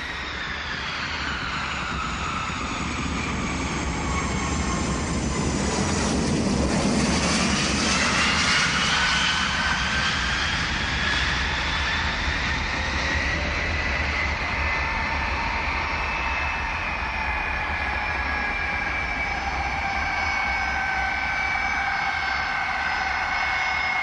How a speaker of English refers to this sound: When the plane landed at John F. Kennedy Airport and taxied over to where you got off the plane, the doors opened and everyone just started getting off, and we kind of just milled in with the crowd getting off the plane.